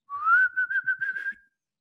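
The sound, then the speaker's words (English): A person whistles a single sustained tone that rises slightly, then wavers in a quick series of pulses before fading out, fairly loud with no talking. “It's a good whistle right there.”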